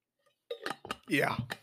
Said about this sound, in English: Let me take a sip of this water, huh? Let me take a sip of this water. If you're watching on YouTube, cheers.